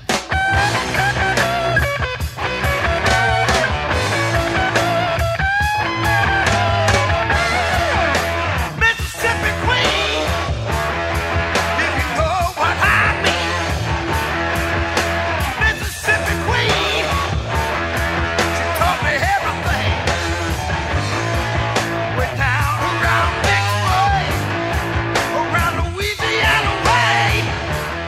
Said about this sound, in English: Here he is leading the song and screaming his head off.